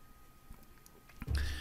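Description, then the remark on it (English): A quiet pause, then a short slurping sip of coffee, a brief airy swell of sound lasting about a third of a second with no talking. “All right, I'm going to need to have a little bit of a sip of coffee before I jump into this, so hold on for a second.”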